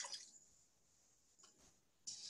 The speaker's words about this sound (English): And we're going to start down in the south in Puy-Vinzelle. So if you have that, please pour that. I should pour mine into my universal glass.